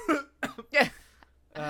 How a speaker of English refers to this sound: No, I gotta be honest. The coughing was an issue.